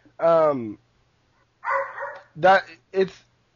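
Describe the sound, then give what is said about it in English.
A female dog waiting to be let out barks in four loud bursts, the first drawn out and almost howling, then a pause before three shorter barks in quick succession. “Shit, I'm going to go let this dog out.”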